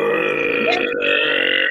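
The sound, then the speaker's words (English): Someone makes a loud fart noise with their mouth, one long, buzzy, raspy blast lasting under two seconds, with no talking over it. “Manny said she'd be dropping them like thunder, like...”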